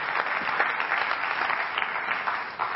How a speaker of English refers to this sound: And also, I just want to take a second to note this beautiful VBS stage up here. Can we get a round of applause for everybody who had a hand in making it?